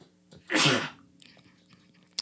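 One loud, explosive sneeze bursts out and fades within half a second, followed by quiet rustling and a brief click near the end.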